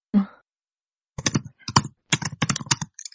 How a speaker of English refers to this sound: I hear typing. Who's typing? Not me. That keyboard is mic'd. It's like some really weird Foley. Like sound effects.